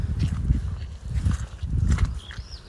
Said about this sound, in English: Listen to that squelch.